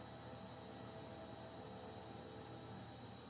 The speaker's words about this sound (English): Well, train's coming through 9 o'clock at night.